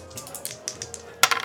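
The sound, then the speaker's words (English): Dice click and rattle in a quick run of light taps as they are passed on to another player, ending in a louder, sharper clatter as they tumble across a hard surface. No one speaks. “We're going to go ahead and pass the dice on to Jeff.”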